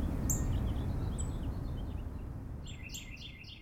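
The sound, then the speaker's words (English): Wild birds chirp and sing outdoors around Fayetteville, Arkansas, in winter during a Christmas bird count, with thin, high tweets scattered throughout and a quick run of repeated chirps near the end, set against a steady low rumble of ambient noise. “Their ears are primed for chirps, squawks, and songs.”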